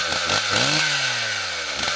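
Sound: chainsaw running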